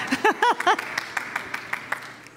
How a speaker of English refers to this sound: Thank you. I give a round of applause to you all and myself.